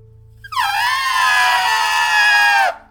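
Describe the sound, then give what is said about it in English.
A person trumpets like an elephant with their voice: one loud, brassy, sustained blare lasting about two seconds, opening with a quick downward swoop and dropping off at the end. “Our first pile, the animal for pile number one, for reading number one, is elephant.”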